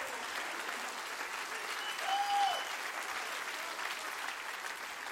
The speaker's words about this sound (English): Jesus loves you in spite of who you are. If you can't get a grip on that grace, you're not going to get a grip on anything. Clap your hands real big and say, "He loves me."